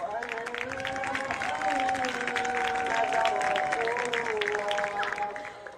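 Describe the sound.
A soccer crowd applauds as play resumes at a women's soccer match between Shabab and Amman, with steady, dense clapping that holds for several seconds, while sustained crowd voices drone beneath the rattle of hands.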